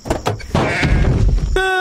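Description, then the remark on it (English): A door is opened into a deer standing right outside it and slams into it with a heavy, dull thud, after a few lighter knocks and followed by a rumbling scuffle, ending on a sustained tonal, bleat-like cry. “I opened the door. I had no idea it was standing right there.”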